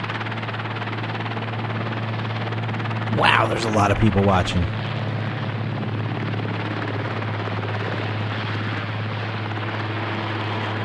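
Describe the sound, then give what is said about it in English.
A steady drone from a helicopter that has taken off fills the whole clip, its rotor hum holding low and constant, with a person briefly speaking over it partway through. “Helicopter's taken off.”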